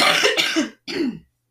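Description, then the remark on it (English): Two harsh coughs from a person in quick succession, the first longer and rougher, the second shorter, loud with a brief gap between them. “I have to cough.”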